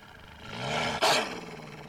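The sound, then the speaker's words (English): A wolf snarls, a rough, throaty growl that swells loudly and then breaks into a sharper, harsher burst halfway through before rumbling on, with no voices present. “The wolf snarled, its lips pulling back, flashing a row of long, sharp teeth.”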